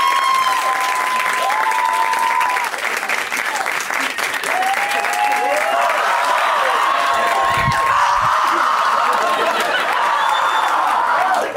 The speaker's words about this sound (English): So, I'll do an impression of men doing stand-up. All I need from you is a huge round of applause. They deserve it.